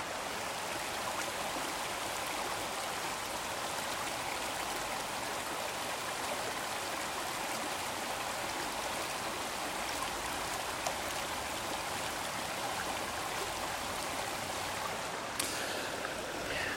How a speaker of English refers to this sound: There is this beautiful like stream going through the resort. So you probably have heard some white noise. It's been running water